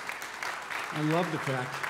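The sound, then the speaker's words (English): An audience breaks into steady, dense applause celebrating Sanctity of Life Sunday, filling the whole moment, with a single voice briefly calling out over the clapping partway through. “And yes, that deserves applause and praise.”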